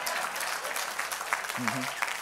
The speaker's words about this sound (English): Oh, I got less claps on that one, but.